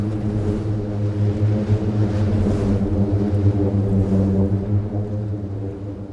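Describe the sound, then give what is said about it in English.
A booming sand dune, being walked on, gives off a loud, steady, low-pitched drone, rich in buzzy harmonics like a badly played tuba. It holds unbroken for several seconds with no talking. “you walk on the dune and it sounds a bit like a bad played tuba, sort of.”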